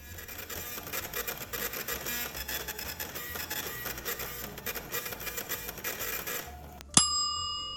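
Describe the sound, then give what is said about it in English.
A food printer prints a meal of hay and a bowl of oats for a horse, running with a steady, busy mechanical whirring and rapid clicking for about seven seconds, then stops with a sharp click and a bright, ringing chime. “Your meal is being printed.”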